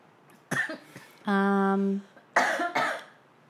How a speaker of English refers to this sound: Am I the only one that coughs?